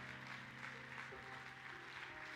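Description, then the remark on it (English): An audience in a Pentecostal church claps steadily on a Tuesday night as a preacher comes to the pulpit, a dense wash of many hands sustained throughout, with a faint musical hum underneath and no clear talking. “Clap your hands as he comes to this pulpit.”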